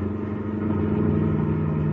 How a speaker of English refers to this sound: Now come up alongside the other car. But come on, step on the gas.